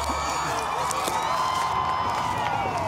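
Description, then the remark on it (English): A large crowd cheers and shouts in a continuous, steady roar, many overlapping voices blending together at a fairly even loudness throughout, with occasional sharper whoops rising above the din. “He was telling the crowd, be quiet. Please be quiet.”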